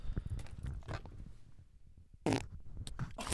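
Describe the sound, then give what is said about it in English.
Several short, sputtering fart noises, low and rumbly, come in uneven bursts with a brief quiet gap before a louder, breathy blast near the end. No talking. “Did you poop your pants? That was so good.”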